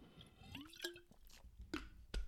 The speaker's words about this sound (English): So if you just bear with me one moment, I'm just going to have a little sip of water.